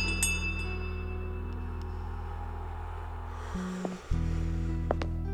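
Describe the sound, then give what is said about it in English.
A small bell moored by a chain at an entrance door, rung to summon an attendant novice, gives a few light, scattered tinkles, thin and metallic, over a loud, steady low droning hum that briefly dips near the end. “Harl rung the little bell and waited.”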